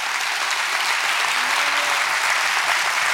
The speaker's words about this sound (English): I'm not going to ask for it, but I think the Lord deserves a hand clap on that one right there.